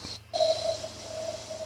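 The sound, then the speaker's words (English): A single long sniff of a popper through the nose, drawn in steadily for over a second with a faint whistling edge over a low background hum; no one speaks. “Yeah, we'll have a little sniff for you, sir.”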